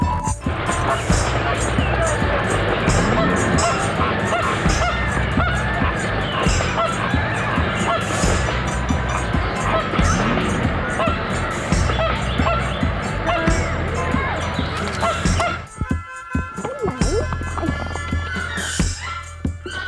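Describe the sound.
A flock of flamingos honks loudly and continuously, many calls overlapping into a dense, raucous chorus, briefly thinning out before the noisy honking resumes, with faint voices mixed in.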